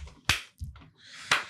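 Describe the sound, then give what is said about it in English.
Two sharp, bright hand claps about a second apart, each a crisp single smack, with a softer low thump between them and no talking. “Clap.”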